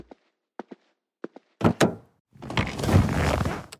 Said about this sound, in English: I pulled the door open and walked out of the house.